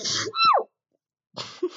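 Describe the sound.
A loud sneeze: a sharp breathy burst with a voiced rising-falling cry, then a short silence before a second noisy, breathy sound.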